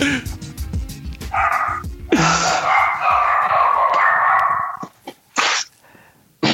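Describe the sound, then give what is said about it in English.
Puppies bark in a run of sharp, yappy yips that ends in a few short separate barks, loud, with people talking over the start. “Hey, it's puppies.”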